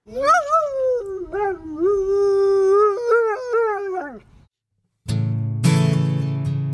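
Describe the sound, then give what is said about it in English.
A dog named Toofy howls, one long wavering call that rises and dips for about four seconds, then a brief silence before louder, dense music-like sound begins. “Our Diamond Dog of the Week is our guest Chip Knighty's dog, Toofy.”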